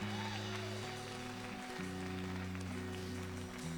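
A church audience applauds for God, a dense, steady patter of many hands clapping together, mixed with sustained organ or keyboard chords that shift pitch underneath. No one speaks over it.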